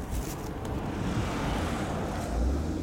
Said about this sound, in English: Well, that might have been windy. I think that might have been. Is that windy? I think so.